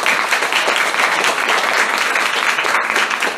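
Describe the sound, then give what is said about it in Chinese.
A large crowd applauds for Amway, clapping steadily in a dense, continuous wash of applause that stays loud and even throughout, with no voices standing out. “所以今天在座的各位，我们是应该给安利一个很大的掌声。”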